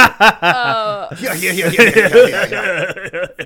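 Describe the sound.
A voice imitates a steam locomotive in the distance: a short wavering whistle-like tone, then loud breathy hissing and puffing bursts that carry on for a few seconds.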